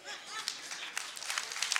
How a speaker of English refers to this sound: Okay, half clap. That's fine.